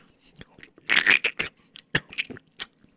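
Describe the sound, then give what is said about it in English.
Crunchy chewing on a vanilla stick broken in half, with a cluster of loud bites near the start followed by irregular, sharper crunches and softer mouth sounds, with no clear talk. “So yeah, just break it in half. We'll each just chew on it.”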